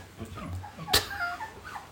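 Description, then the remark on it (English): A puppy in the corner whimpers and cries in short, high-pitched whines, fairly quiet, with one sharp, brief noise in the middle of the whining. “That's the puppy in the corner crying.”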